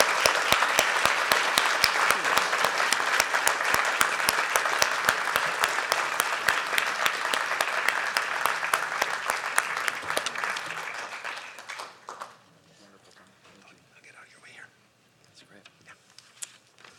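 A room full of people claps steadily for about twelve seconds, a dense, even patter that thins and fades out, leaving quiet room noise with a few faint stray sounds.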